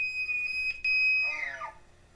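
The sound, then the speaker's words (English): A recorded elk bugle played back: a loud, high, pure whistling tone held for over a second with a brief break, then sliding downward into a rougher, lower descending call before fading. No talking. “And I'm gonna play an elk bugle sound real quick, so people can hear.”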